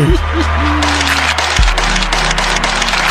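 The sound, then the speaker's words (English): A crowd applauds and cheers, dense scattered clapping mixed with shouting voices, steady and fairly loud for a few seconds over a low humming tone. “Everybody make some motherfucking noise.”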